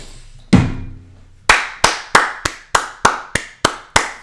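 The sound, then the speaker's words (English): One sharp, resonant clap, a short pause, then a steady run of about nine crisp hand claps at an even, brisk pace, loud and with no voices. “Now allow me to turn those claps into tears of sadness when we could use him and he's not getting even a second of playing time.”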